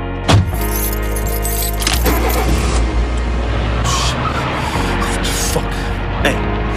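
vehicle, car

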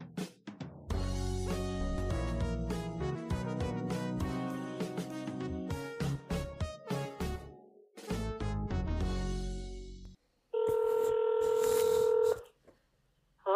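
signal or alarm, telephone dialing tones

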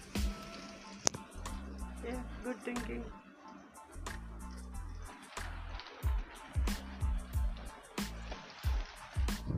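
nature, heavy rain falling

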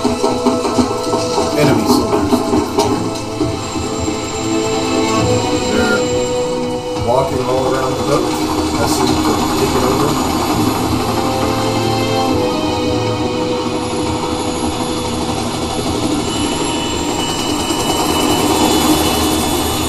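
vehicle, helicopter engine

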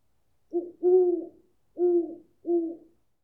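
bird, owl hooting

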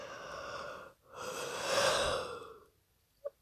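human body sound, a small yawn

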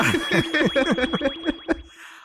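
sound effect, alarm sound effect

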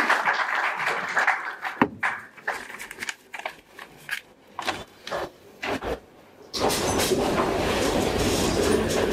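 crowd, audience applause

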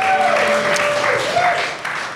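crowd, audience applause and cheering

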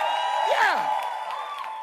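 crowd, audience clapping and shouting

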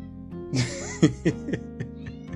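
animal, cat meowing

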